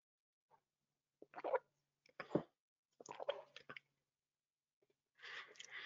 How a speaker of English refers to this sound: This gives me a chance to get a sip of water before we dive into the first one.